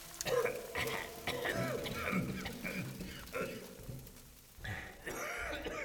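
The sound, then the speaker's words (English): Several people cough and pant hard at once in utter darkness, overlapping rough bursts and throat-clearing sounds, with a brief lull near the end before the coughing picks up again. “There was coughing and panting everywhere, and Ludlov could hear Blessed Seelenheim fervently praying for help.”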